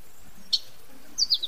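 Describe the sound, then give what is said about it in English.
Short, shrill calls of a red parrot from the Mayan jungles: one quick squawk, then a brief burst of three sharp chirps a moment later, fairly clear against a quiet background. “Red parrot.”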